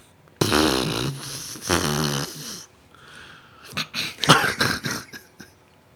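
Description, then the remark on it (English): A voice imitates a deflating balloon flapping around: two long, buzzing, sputtering raspberry bursts, followed by a series of shorter, choppy flutters and puffs, fairly loud. “It'd be like, we let a balloon go and just like flapping around. Is that how it would be?”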